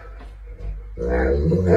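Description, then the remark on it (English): After a second of low background rumble, an Alaskan Malamute dog lets out a loud, drawn-out vocalization with a warbling, speech-like quality, like a howl bent into words. “The dog, an Alaskan Malamute, walks into the back of the shot, opens his little mouth, and this comes out.”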